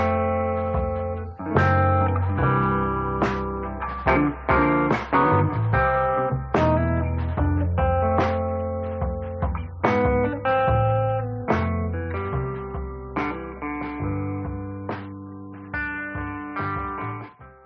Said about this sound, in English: for the opening and closing music.